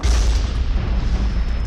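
A mortar bomb hits a house: a loud, deep boom that rolls into a heavy, rumbling roar of noise, sustained for under two seconds with no voices.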